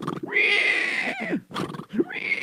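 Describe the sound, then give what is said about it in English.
A voice imitates a horse's neigh: a loud, drawn-out whinny with a wavering, quavering pitch, followed by shorter breathy snorts and a rising squeal. “And the horse saw the snake, and the horse jumped up.”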